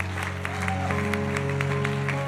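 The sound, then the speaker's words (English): A large audience claps hands to Jesus in a dense, steady burst of applause, heard over sustained organ-like musical tones that hold underneath throughout. “Would you clap your hands to Jesus one more time?”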